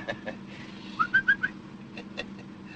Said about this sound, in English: Say, that's a pretty bird. Yeah, surprise for my wife. And the five dimes says he's a guaranteed warbler, your money back.